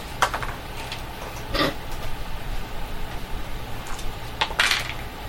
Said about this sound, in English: Somebody roll two dice for me. And you roll one die for your initiative.